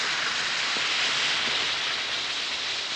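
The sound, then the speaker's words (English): One or two Alka-Seltzer effervescent tablets fizz in a glass of water, a steady, dense crackling hiss that stays loud and even throughout with no voices. “Drop one or two Alka-Seltzer tablets into a glass of water like this, and listen to it fizz.”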